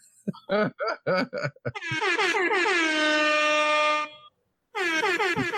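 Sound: air horn blast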